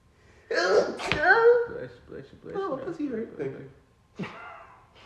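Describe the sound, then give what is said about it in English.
A single loud sneeze with a sharp burst at its peak, followed by a few seconds of indistinct voices talking. “Bless you.”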